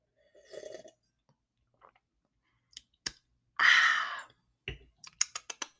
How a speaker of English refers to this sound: So I'm going to take a sip of my wine, let you ponder for a quick sec, and then we'll get into it.